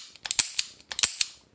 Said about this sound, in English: The gunslinger kicks the doll off and turns to release a bevy of bullets.